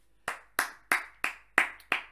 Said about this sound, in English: And then everyone stood and clapped.